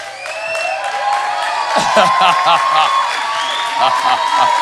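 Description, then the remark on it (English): A crowd claps and cheers steadily as a young man is called up to the front, with whoops and shouting voices layered over dense applause that holds a fairly even loudness throughout. “All right, we got the whole cheering section.”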